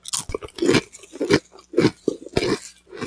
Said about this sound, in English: Yeah, these are thinner. They're not like a Pringle. It's like a thin-cut kettle chip. See how they crunch.